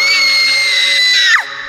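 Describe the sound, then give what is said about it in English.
A loud, high-pitched scream like a young child's holds steady for over a second, then breaks off with a falling wail, over a deep, continuous roar that lingers briefly after. “And then a scream. That of a young child and a roar.”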